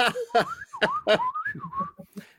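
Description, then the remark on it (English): Someone whistles a quick run of warbling, chirpy beeps and swooping pitch glides, imitating the Star Wars droid R2-D2, fairly loud, with breathy bursts between the tones. “That whistling.”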